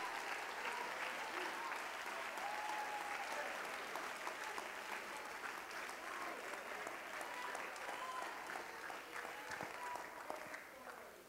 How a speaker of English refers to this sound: I wish you would clap if you hear what I'm saying.